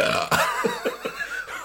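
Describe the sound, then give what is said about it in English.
A wet, gurgly burp after eating mozzarella cheese sticks rumbles out in several short, low pulses, starting with a loud burst and trailing off into smaller croaks, with no talking over it. “You're blowing mozzarella bubbles.”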